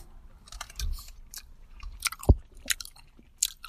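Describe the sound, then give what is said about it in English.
Wet chewing of a firm Haribo Happy Cola gummy candy, with irregular squishy bites and small smacking clicks repeating over a few seconds, fairly quiet with no talking. “The Happy Colas are a stiff chew.”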